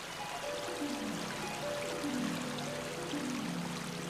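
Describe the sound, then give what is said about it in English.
A waterfall rushes steadily in the distance, a soft continuous wash of falling water with faint gurgling, bubbling tones drifting through it and no voices. “Maybe our treasure's buried near the waterfall!”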